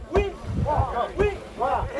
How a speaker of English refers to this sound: It is a lovely ceremony when a boat arrives at the shores of the lake. Chants are made while women wait anxiously with their baskets.